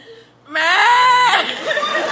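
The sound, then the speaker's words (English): A person imitates a screaming cow with one loud, strained, high-pitched vocal wail that starts abruptly after a brief pause, holds a wavering pitch, then trails off raggedly. “And this is the sound of a screaming cow.”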